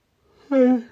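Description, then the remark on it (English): A single short yawn: a soft breathy intake swelling into a brief voiced, sighing tone that slides downward in pitch and fades out. “Ooh, I'm a little yawn there.”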